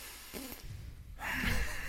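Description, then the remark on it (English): A breathy inhale drawn through the nose with the mouth open, starting soft and swelling into a louder, rushing intake near the end; no talking. “Because you breathe in with, like, your mouth's open, but you're breathing in through the nose.”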